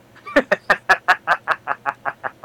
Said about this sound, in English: Was that a chicken? What are you doing?